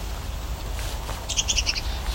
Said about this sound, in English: Some red-winged blackbirds.